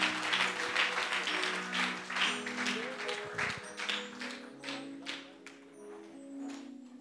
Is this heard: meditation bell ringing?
no